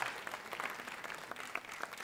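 An audience gives Jesus a hand clap of praise, many hands clapping in a dense, steady patter, with a few sharper individual claps standing out. No one speaks over it.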